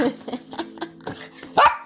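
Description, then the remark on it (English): A small Yorkshire terrier, Yorkster, yaps in a quick, steady run of sharp, high barks, ending with one louder, strained yelp, with no voices. “York, Porky Yorkie. That's what my grandma called him.”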